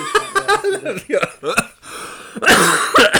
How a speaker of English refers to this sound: Made me cough a lot.